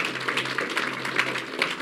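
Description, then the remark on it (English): An audience applauds people who have just prayed, many hands clapping together in a dense, steady crackle that holds at an even, moderate loudness throughout, with no voices over it. “Let's all applaud them really well.”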